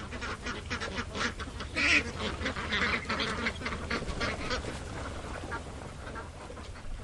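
A crowd of live ducks and geese quack and honk continuously, their overlapping calls forming a busy, noisy chorus with a louder burst of honking near the middle.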